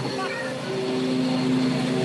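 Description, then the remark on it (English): Lawn mowers drone steadily throughout, heard through an open door and window, a continuous buzzing hum with a fairly loud, unchanging pitch, with faint voices mixed in underneath. “The mowers are in the building.”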